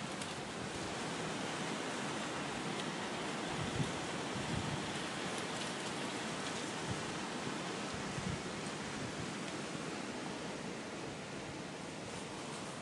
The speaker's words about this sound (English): It makes for very peaceful sounds, as this is in the early hours of the morning. It's dark and it's just the wind and the rustling of the trees, and it's so nice.